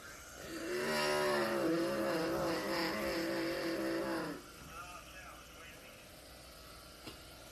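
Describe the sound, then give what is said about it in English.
Several race cars in a racing video game, at Pocono, roar together at high revs into turn one, a loud layered whine that holds for about four seconds before dropping away abruptly, leaving a faint low rumble behind. “Cars are ablaze in turn one.”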